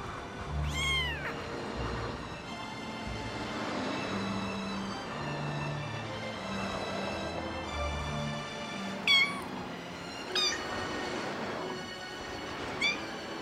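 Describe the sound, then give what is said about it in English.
A cold, wet, lost kitten at the edge of a street, with cars driving by, gives several thin, high-pitched meows, one near the start and three more spaced out toward the end, over a steady low rumbling background. “We must leave our cold, wet kitten”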